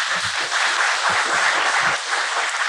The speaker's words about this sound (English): Okay, clap it up one more time.